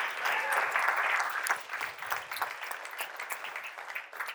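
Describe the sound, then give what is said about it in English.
An audience claps to praise Jesus in a dense, sustained burst of applause that starts strong and gradually thins out over a few seconds, with scattered individual claps and faint voices mixed in. “And look, if you don't follow Jesus, we're not doing that to try to coerce you into clapping.”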